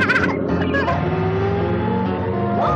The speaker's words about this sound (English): So a truck driver, when I cut the clip, a truck was driving up. You just get a glimpse of the truck driver.